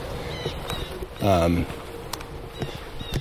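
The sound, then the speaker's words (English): A jay gives one harsh, nasal call lasting about half a second, loud, with faint higher chirps and light rustling in the background. “Oh, yeah, it's a jay.”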